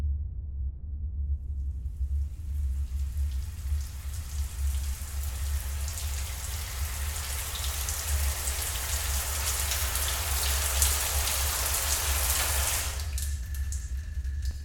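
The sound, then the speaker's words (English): A shower in a Spartan Spaceways bathroom suite sprays steadily for about eleven seconds, a dense hissing patter of water over a low rumble, then abruptly cuts off as the daily shower water allowance runs out, leaving only a faint hum. “I'm going to have a shower.”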